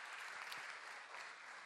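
A crowd claps steadily, a dense and even wash of many hands at a constant loudness with no voices over it, for under two seconds.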